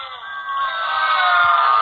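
A studio audience boos together in a sustained, swelling roar of many voices that grows slightly louder over a couple of seconds, with no one speaking over it.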